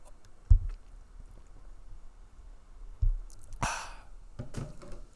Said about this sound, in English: So, like, hold on, give me a second. I need to drink water.